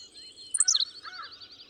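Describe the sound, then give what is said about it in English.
A Henslow's sparrow gives a rapid burst of about five high, sharp notes stepping downward in pitch, then trails into a thin buzzy trill. Clear, with no voices. “When you play back that to slick, slow it down, it's actually five beautiful little notes that the bird is delivering so quickly the human ear can't resolve them.”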